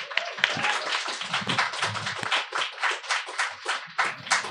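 An audience at a book event applauds an author being introduced before she reads from her memoir, in a dense, steady patter of many overlapping hand claps that holds at an even loudness for several seconds, with no one speaking over it.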